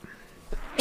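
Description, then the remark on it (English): A short intake of breath, then a sudden, loud sneeze bursts out sharply at the very end, with no talking. “hold on, I got to sneeze.”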